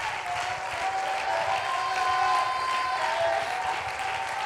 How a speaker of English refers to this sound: And if you want that to fall in your house, in this house, and in your community, why don't you give God one more good hand clap of praise and shout.